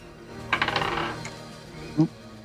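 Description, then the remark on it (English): Dice clatter across a hard table during an initiative roll in a tabletop game, a quick burst of rattling bounces that settles within a second, followed shortly by a single soft knock. Fairly clear, with no talking. “Let me roll it.”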